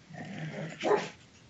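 A dog growls low and steadily for a moment, then lets out a single sharp bark, with another quick yelp at the very end. Fairly quiet.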